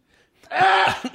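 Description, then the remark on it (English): A single short, harsh throat clearing, a raspy burst lasting under a second after brief quiet, with no talking around it. “Oh, no, I just need to clear my throat.”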